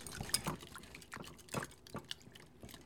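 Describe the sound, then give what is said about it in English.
A whisk sloshes through a thick mixture of cream, chocolate and butter in a bowl, making soft, wet clicks and scrapes in a steady, quick rhythm as it is whisked until melted into one mass. It is fairly quiet, with no talking. “Take a whisk and just whisk until all of that is melted into one mass.”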